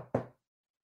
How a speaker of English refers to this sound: He brought this woman home. He kicked her ass out. And she knocked on my door.